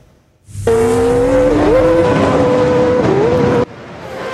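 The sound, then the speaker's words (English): A loud, high-revving racing engine roars for about three seconds during a race in Turkey between a fighter jet, a Formula One car, an electric car and a superbike, its whining pitch dipping briefly with gear shifts before cutting off abruptly. No one speaks. “A fighter jet, a Formula One car, an electric car, and a superbike among the contestants in this race in Turkey.”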